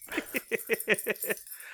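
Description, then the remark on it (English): A dog named Retta scratches herself in a quick, steady rhythm of about seven strokes, each one rattling and jingling like collar tags. It is moderately loud, with no talking over it. “And my dog's scratching in the background.”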